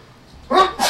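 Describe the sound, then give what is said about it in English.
A single sneeze: a short voiced catch that breaks into a sharp, hissy burst, fairly loud against a quiet background with no talking. “Bless you. Yeah, good one.”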